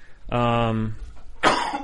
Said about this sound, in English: Sorry about my coughing, everyone. I'm dying.